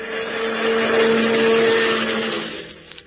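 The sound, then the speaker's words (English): A chauffeur drives one of Hubert's big, long cars out through the driveway; the engine hums and rumbles steadily, swelling slightly as it moves, then trailing off toward the end as the car pulls away. No one speaks. “The chauffeur is driving one of Hubert's cars out.”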